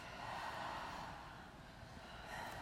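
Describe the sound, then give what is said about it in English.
Breathy airflow fills the moment: during a breathing exercise, a person draws in two inhales and lets out a long exhale, soft and steady with no talking. “The most important is that you're really working from the base of your body and you're inhaling twice, really filling your beautiful vessel up. And you're just inhale, inhale, exhale.”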